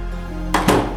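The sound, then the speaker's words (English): A front door opens and bangs shut: two quick, solid thunks about a beat apart, the second slightly louder, over a steady low hum. “The door opened and shut.”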